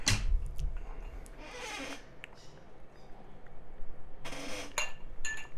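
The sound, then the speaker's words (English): Glasses clink together in a toast, a few bright chiming taps mixed with brushing, scraping handling noises, with no one talking. “Cheers.”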